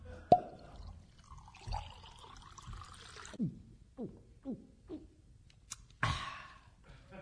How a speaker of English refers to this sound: Mr. Harddisk has used gravity to pour and drink his milk. Yummy.